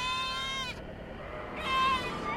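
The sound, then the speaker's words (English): A dying lamb lets out two drawn-out, almost human wailing bleats separated by a short pause, heard over a low, rough background noise. “Anyone who has butchered sheep knows the sound of a dying lamb. An almost human wail.”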